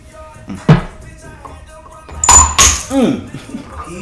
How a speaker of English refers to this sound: He done broke the motherfucking glass.